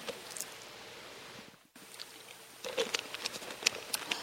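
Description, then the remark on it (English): Light rain patters steadily outside, with scattered irregular drops and taps. After a brief dip it thickens and grows louder. No voices are heard. “Is the rain starting now? It sounds nice.”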